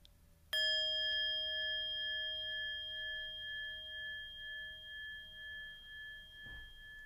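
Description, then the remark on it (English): A hanging meditation bell, used for morning meditation, is struck once, clear, then rings on with a long, shimmering sustain that slowly pulses and wavers as it fades. No one speaks. “for our morning meditation and during our Thursday evening practices, this is the bell that I use. It's a hanging bell.”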